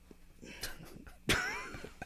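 A single loud, abrupt burp into a microphone bursts out after a second of quieter breathy vocal noise, with a rough, gurgling tone that trails off over about half a second.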